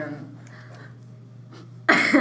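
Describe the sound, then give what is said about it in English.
After a near-silent stretch with a low electrical hum, a loud, harsh cough bursts out right up against the microphone near the end, rough and breathy. “Don't mean to cough in the microphone.”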